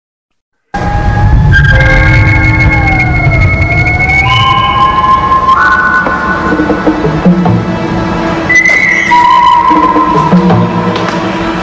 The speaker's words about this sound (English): I mean, I don't know where in my memory that whistle was, that sort of jungly, tribal call and response whistle that, I mean, it hit me right in the heart.